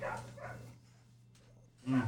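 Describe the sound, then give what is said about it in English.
Dogs barking in a few short bursts, a pair near the start and a louder one at the end, somewhat muffled against a steady low hum. “fucking dogs are barking ruined the whole again.”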